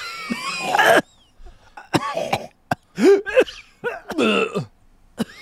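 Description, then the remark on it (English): A voice puts on a string of exaggerated, theatrical coughs, starting with a long raspy throat-clearing hack followed by several sharp, forceful bursts with short pauses between them. “I appreciate good cough acting, …. That's a very good cough.”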